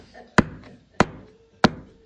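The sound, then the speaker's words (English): Three sharp, evenly spaced knocks on a door, each a crisp solid rap about half a second apart, fairly loud against a quiet background. “I'm just standing at the door knocking.”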